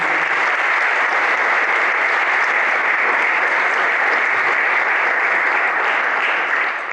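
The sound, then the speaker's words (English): Sustained applause from a sizable audience for the members of a team, a dense, even wash of clapping that stays loud and steady for about seven seconds with no voices standing out. “Hey, round of applause for these guys.”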